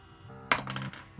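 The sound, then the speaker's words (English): Dice clatter across a hard tabletop in a quick burst of sharp little clicks that settle within half a second, rolled for an opposed strength check in a tabletop role-playing game. Fairly quiet, with no talking. “Gonna roll with my lucky dice.”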